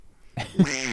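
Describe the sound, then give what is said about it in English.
A person does a brief Donald Duck impression, giving one short, raspy, buzzing burst of quacking-style gibberish that swells in the middle. It is fairly loud, with no other sounds. “I want to be a Disney adult in that I want to get fired from a job like Chris Chan by scaring the shit out of a child and making him cry doing a Donald Duck impression.”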